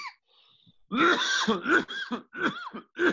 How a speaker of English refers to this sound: There's that infamous cough.